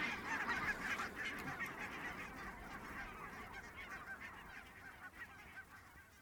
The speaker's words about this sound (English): Thousands of barnacle geese come to Oronsay to spend the winter.